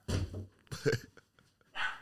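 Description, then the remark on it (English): A guard dog lets out three gruff barks, two close together and a third after a short pause, sounding a little muffled, with no talking. “That's the guard dog.”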